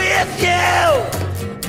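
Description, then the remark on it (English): A singer who cannot reach a high note screams it instead: a loud, strained vocal cry rises and bends downward over a second, harmonically rich and raw, more shout than sung tone, with a low steady hum and background noise beneath. “He can't reach it, so he's just screaming.”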